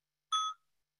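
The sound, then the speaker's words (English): A bell is struck once, giving a single bright, high ring with shimmering overtones that fades quickly into silence. No voices or other sounds accompany it. “So let's have a sound of the bell”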